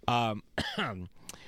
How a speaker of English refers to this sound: pardon me. I had too much coffee, and that's why I coughed.